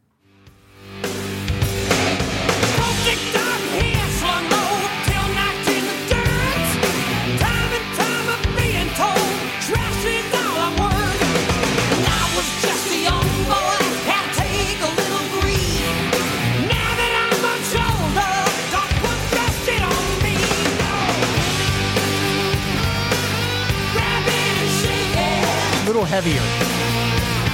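A loud heavy metal song plays continuously, with dense distorted guitars, pounding drums and a driving beat under shouted, yelling vocals, filling the whole stretch without pause.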